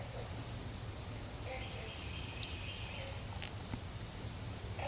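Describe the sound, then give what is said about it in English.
Continuous wetland ambience on the Bayou Coquille Trail outside Marrero, Louisiana, near New Orleans: a dense, steady low drone of frogs and insects, with a few faint, scattered bird calls rising above it. No one speaks. “And it's a wetlands teeming with life, as you can hear. Frogs and birds and insects and snakes and alligators.”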